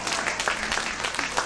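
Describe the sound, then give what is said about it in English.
Three hand claps: a brief, steady burst of sharp, bright slaps that blend into a dense wash like applause, with several stronger claps standing out. No one speaks. “Oh, three hand claps on that.”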